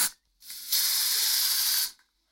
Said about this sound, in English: It's either hairspray or... forgot the spray word. Spray paint. Is it spray paint or hairspray? I mean, it doesn't specify. All it says is aerosol spray. So I guess either would work.